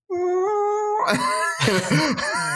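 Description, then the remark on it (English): A voice imitates a hungry stomach by mimicking a crying cat: a steady, high, tonal wail for about a second, then a raspier stretch of warbling, whining yowls that bend up and down in pitch. “That's the sound my stomach makes when it's hungry.”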